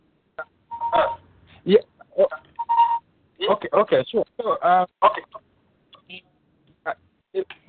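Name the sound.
phone ringing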